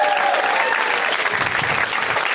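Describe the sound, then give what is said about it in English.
An audience at a live comedy show applauding steadily, a dense, continuous wash of clapping that stays loud and even from start to finish, with no voices standing out. “I'm going to keep making you guys clap.”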